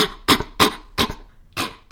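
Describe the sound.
A person imitates a mountain gorilla's irritated, cough-like warning bark: four short, sharp bursts in a quick uneven rhythm, fairly loud, with brief silences between them.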